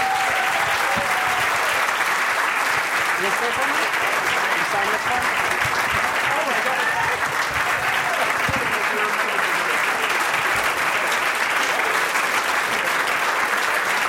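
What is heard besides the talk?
audience applause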